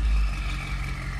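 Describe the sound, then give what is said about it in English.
A Nardo gray car's engine catching at startup with a strong low burst, then settling into a steady, loud rumble with faint popping in the exhaust; no one talks. “Little pops on startup.”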